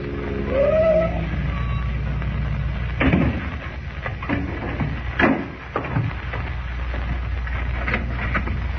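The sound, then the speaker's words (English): In the morning, Clark Kent pulls up in a car borrowed from Graham before the real estate office of Ed Jenks. Its engine rumbles low with a brief rising whine early on, then settles as it stops, followed by a few sharp clunks and clicks. “The following morning, before Lois and Jimmy awaken, Kent, in a car borrowed from Graham, pulls up before the real estate office of Ed Jenks.”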